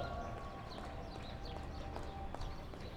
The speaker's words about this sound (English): Yeah, the 7 o'clock clap. Do you have that where you are? We do not have that where I'm at here.